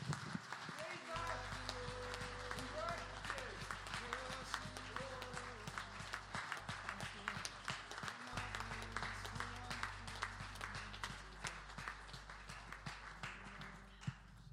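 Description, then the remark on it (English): A church audience applauds steadily for the whole stretch to thank the Lord, dense overlapping claps, with low sustained keyboard notes and scattered voices underneath. “Let's just applaud the Lord.”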